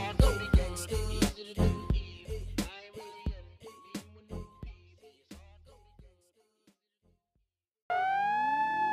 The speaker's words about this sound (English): Yo, you hear them sirens? I know you hear them. Don't get scared. It ain't 5-0, nah.